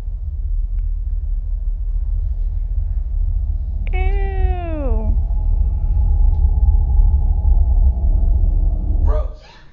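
A cat lets out one clear, drawn-out meow that slides downward in pitch, over a steady low rumble like an idling engine.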